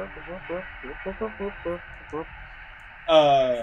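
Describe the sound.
A voice imitates a humming noise: a string of short, soft hummed pulses, then a louder drawn-out vocal tone that dips slightly in pitch at the end.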